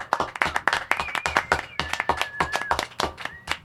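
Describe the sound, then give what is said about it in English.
A small group on the Todd Glass Show claps fast and hard, packing dense, sharp claps together to sound like a bigger crowd, with a thin high whistle-like tone drifting over the steady applause. “You got to make it sound like there's a lot of people.”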